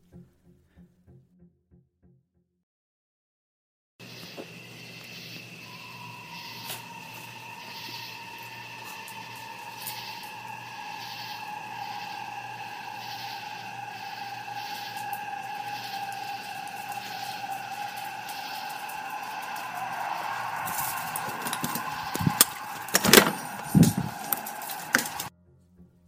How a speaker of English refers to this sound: To be honest, I believe we are hearing a large pack of coyotes or coy wolves at a distance. For those that haven't heard of the coy wolf, it's exactly as it sounds, a mix between a wolf and a coyote.